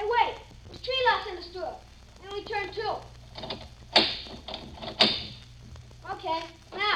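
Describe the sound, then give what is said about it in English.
Two sharp metallic clunks, about a second apart, as door locks are turned and the locked door, which still does not open, is rattled, while people keep talking over them. “Okay, nothing. The door still don't open.”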